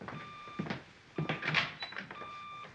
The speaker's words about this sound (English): There it is again. That funny beeping sound from Bruce's study. No doubt some of his hi-fi equipment needs adjusting.